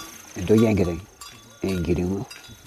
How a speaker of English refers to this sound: brings 50 head of cattle home for the night. Cattle are the staple of the Maasai diet and their culture.